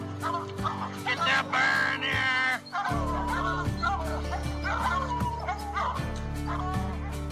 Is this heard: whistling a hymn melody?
no